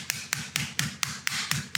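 Rapid, steady pounding on the thick end of a chicken breast to flatten it: about eight sharp, evenly spaced thuds in under two seconds, each a crisp slap with a dull low knock underneath, with no talking.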